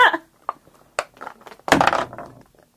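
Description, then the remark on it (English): Small hard dice, rolled for an attack hit, clatter and tap across a surface in a few quick, uneven knocks, followed by a louder rattling tumble before settling, fairly crisp. “Because when it rolled in my lap, it landed on a 2.”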